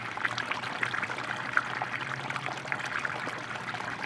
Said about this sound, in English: You have to have a pebble beach, you have to have koi, of course, you usually have an island, and a small waterfall, not very big, usually it's more like a stream coming into the pond.